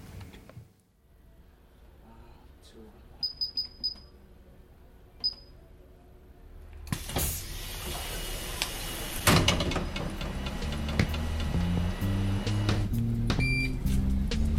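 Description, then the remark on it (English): A few short electronic beeps sound inside a quiet London night bus at about 5 a.m., then doors hiss open and a louder rumbling interior takes over, with more beeps and stepped tones over the engine noise. “Welcome to the night bus.”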